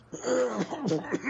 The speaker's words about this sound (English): Okay, your cough is still lingering, I see. Or was that just the soup getting caught? That was the soup.